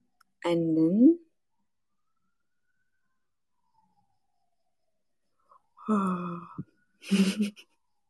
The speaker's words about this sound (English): Sorry, I'm yawning.